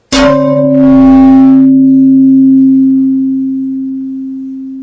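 A single sharp knock on a stiff carbon-fiber composite test piece for helmets shipped by the spinoff FiberForge sets off a clear, bell-like ringing tone that sustains for several seconds and slowly fades, with a brief scraping rustle just after the hit.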